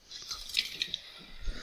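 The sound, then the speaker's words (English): Wheat beer foaming over after being opened: a steady, bright fizzing hiss scattered with little crackles and pops, fairly loud and lasting under two seconds, with no voices. “Yeah, well, you got the fizz of the wheat beer anyway.”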